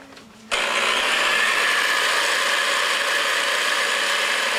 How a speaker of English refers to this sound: I'm going to go over to my mixer now and beat my eggs. First, I'm going to beat the eggs and the sugar on high speed until they're nice and creamy.